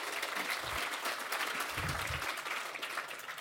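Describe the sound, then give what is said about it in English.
An audience at the Byron Writers Festival claps steadily to welcome three panellists, a dense, even wash of many hands applauding without a break for a few seconds, moderately loud with no voices over it. “if you could give them a round of applause to welcome them.”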